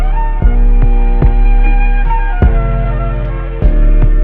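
A pared-down hip-hop beat: a looping melodic sample over deep, sustained 808 bass, punctuated by punchy kick drum hits in a loose, irregular pattern. Loud and up front, no vocals.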